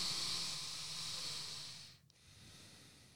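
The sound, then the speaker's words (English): A person takes a long, airy breath in through the nose, pauses briefly, then a softer exhale out through the nose follows, steady and hissing with no talking. “breathe in and breathe out from the nose, you know, clears my sinuses.”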